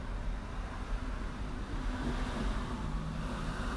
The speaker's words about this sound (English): And there's a car driving again.